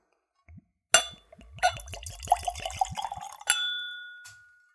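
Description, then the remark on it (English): A brief knock, then a light golden amber spirit glugs rapidly from a bottle into a tulip-shaped glass, poured neat at room temperature with no ice, in a quick burst of bubbling pulses, ending with a bright clink that rings out and slowly fades. No one speaks. “And now let's go for a pour.”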